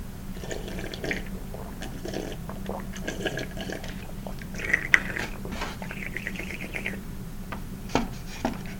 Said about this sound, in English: Sip some more.